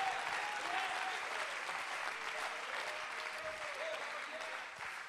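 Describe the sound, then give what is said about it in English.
A large crowd gathered at an evening service dedicating a holy place claps steadily and loudly, with scattered shouts and cheers rising over the applause, sustained throughout and easing off only slightly at the very end. “Clap your hands and shout unto God with a voice of triumph.”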